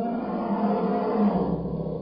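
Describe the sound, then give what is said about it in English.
A giant bear's deep, sustained roar rumbles for about two seconds, loud, with a rough, growling texture and no other sounds around it; the bear roars and then runs away from a cave. “The bear then roars and runs away.”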